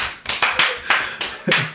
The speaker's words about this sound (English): Crowd erupts. People are going pretty crazy at this point. It seems like you guys aren't the only people that have been drinking, and there's yeah. just a general merriment in the crowd.